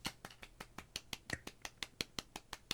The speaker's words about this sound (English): It's golf clap. Both of us were clapping. That was golf clapping. It was a congratulations for having a great weekend.